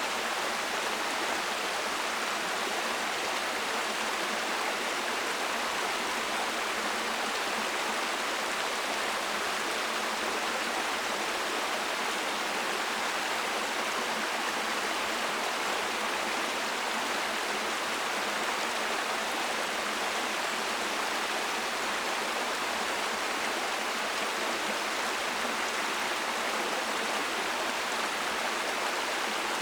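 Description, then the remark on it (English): Clear, cool water runs steadily over rocks in a stream, a continuous bright rushing and babbling that stays even for the whole stretch, with no voices. “And whenever your mind wanders, I want you to come back to the sound of this running, clear, cool water running over the rocks.”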